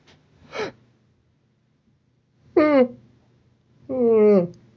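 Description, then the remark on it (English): A person imitates a fake yawn: a short breathy burst, then two longer drawn-out vocal yawns whose pitch slides downward, loud, with quiet gaps between them and no talking. “Like, how would you do a fake yawn?”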